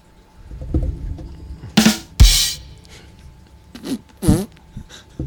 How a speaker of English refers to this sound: Is everything we do going to be replaced with a fart noise?